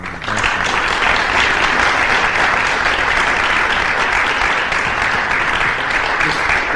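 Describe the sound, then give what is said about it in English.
Sustained, loud applause from an audience, a dense steady patter of many hands clapping throughout, with no talking heard over it. “The story is not for the applause.”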